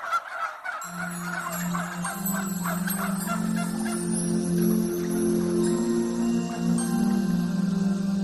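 A turkey gobbles in rapid warbling bursts, loudest at the start and repeating throughout, with a steady low hum running underneath and no one talking.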